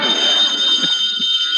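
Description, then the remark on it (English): A telephone at the McGee residence rings with a continuous, shrill, high-pitched electric bell tone that sounds loud and unbroken for over a second, with no voices. “Answer the phone, Throckmorton.”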